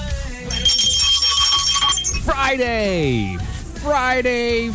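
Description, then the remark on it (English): A bright bell rings steadily and loudly for about a second and a half on the Friday Defenders Live show on Mojo 5-0, then stops as voices take over with animated, swooping speech. “The bell did get heard.”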